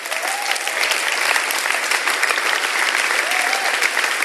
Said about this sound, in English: Stand to your feet if you came to Christ. Have a look around, church. And then give these people a round of applause.